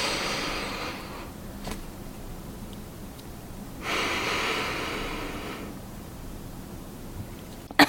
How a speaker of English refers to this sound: I'll do a demo for you. If you're not watching, it might be weird, but just know that I'm breathing, and this is box breathing.